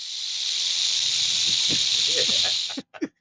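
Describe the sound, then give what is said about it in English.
A person hisses like a snake, a loud, steady breathy hiss lasting nearly three seconds, then it cuts off abruptly and a few short spoken syllables follow. “Yeah, that's my snake sound.”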